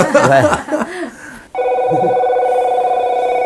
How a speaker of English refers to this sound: Our conversation was interrupted by a phone call.